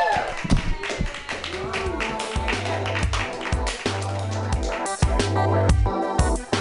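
An audience claps steadily and densely while upbeat music with a pulsing bass beat plays underneath, the applause holding at a fairly loud, even level throughout.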